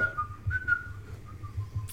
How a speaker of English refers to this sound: Kill Bill whistle song.